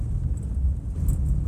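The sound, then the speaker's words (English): Steady low rumble of road noise inside a moving pickup truck, a constant deep drone with a faint hiss above it and no voices. “This truck seems to amplify the road wash rather than soften it.”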